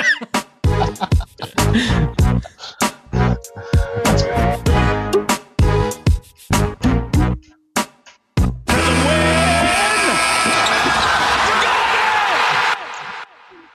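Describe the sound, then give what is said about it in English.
A Raptors basketball team intro sting: loud, punchy rhythmic stabs and booming bass hits with brief gaps, then a sustained roaring wash of noise for about four seconds before it cuts off. “would you give me that Raptors sting?”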